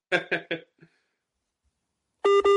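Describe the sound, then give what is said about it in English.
A phone call with boxer Roy Jones cutting off: three short rough bursts, a pause of silence, then a loud, steady electronic beep tone with a buzzy, harmonic edge starts abruptly at the end. “And now his phone's just disconnected, but you just had Roy Jones there.”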